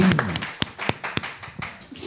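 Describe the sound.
A person claps one-handedly against their own thigh about half a dozen times in an uneven rhythm, each smack sharp and fleshy, with a faint voice murmuring briefly at the start.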